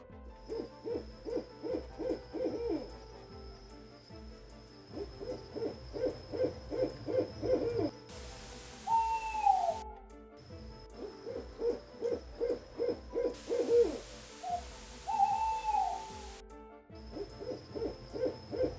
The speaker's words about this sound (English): See, my owl will listen to everything I say. Everything. And my owl is a wild bird of prey.